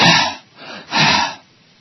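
A deep, gasping breath drawn in, then a second long airy breath after a brief pause, both loud and breathy with no talking.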